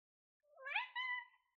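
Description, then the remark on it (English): A single drawn-out meow from Bumi, a pet cat, rising then holding in a slightly strained, two-part call, heard clearly with silence around it. “Bumi, how does it feel being our cat and being named after the one and only King Bumi of Omashu?”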